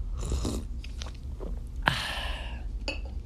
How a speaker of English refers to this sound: Let me have a sip of my coffee. My God, amor mia. I have this new Reese's Pieces Better Cup. You mess it with me, I'll mess you up. Coffee creamer, it's so good.